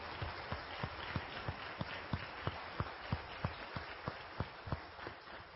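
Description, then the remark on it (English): An audience applauds, a dense wash of clapping with a steady rhythmic beat of sharp claps running through it, holding at an even, moderate loudness with no talking. “And we do applaud you.”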